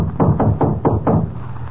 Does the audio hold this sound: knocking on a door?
yes